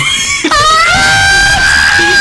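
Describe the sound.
A voice imitates little kids screaming, a loud, sustained high-pitched shriek that breaks briefly near the start and then holds on, wavering, for about two seconds.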